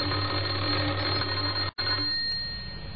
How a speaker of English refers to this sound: He had a worried expression on his face as he walked up the few steps and pressed the doorbell. Again he tried.